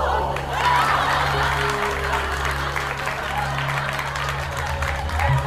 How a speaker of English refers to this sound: The studio audience roared with laughter and applause.